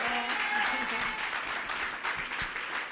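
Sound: audience applauding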